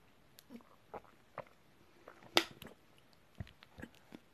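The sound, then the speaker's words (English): Quiet mouth sounds of someone sipping water: small wet clicks and gulps scattered over a few seconds, with one sharper slurp midway and no talking. “Let me wet my throat.”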